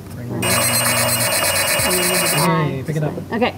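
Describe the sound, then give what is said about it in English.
A telephone bell rings loudly and continuously for about two seconds, a dense metallic trill, with voices talking underneath and briefly afterward. “Pick it up. Ahoy, ahoy.”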